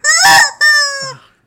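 A rubber chicken toy squeezed, letting out a loud, raspy squawk followed by a longer, reedy squeal that trails off, with no one talking.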